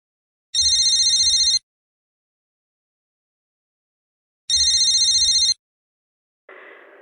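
A telephone rings twice as a woman calls her cousin for the coquito and pasteles recipe, each bright electronic trill lasting about a second with a long silent gap between, followed by a brief muffled click as the line is picked up.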